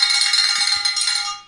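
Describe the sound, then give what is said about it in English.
A yellow bell in a studio, rung for a new monthly donor during a pledge drive, rings brightly and steadily for about a second and a half, its sustained metallic tones shimmering high before slowly fading out. No voices accompany it. “And we've got a board over here that tells us that if we get a monthly donor, we get to ring the bell.”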